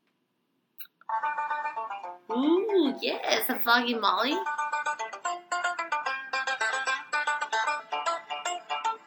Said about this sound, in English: What's your favorite ringtone? My favorite ringtone is this one.